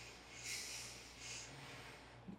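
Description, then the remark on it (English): Two heavy, airy breaths blow straight into a close microphone, each a soft rushing hiss lasting about half a second, separated by a short pause over a faint low hum. “Breathing on the mic.”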